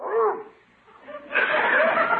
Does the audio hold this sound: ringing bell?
no